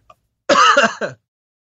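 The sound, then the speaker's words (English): A harsh, choking cough after someone swallowed bursts out in a loud rasping fit, followed by a shorter throat-clearing hack. A tiny click comes just before; no one speaks. “Yeah, don't choke to death and have have the last thing you hear be me rambling about recasting Leia.”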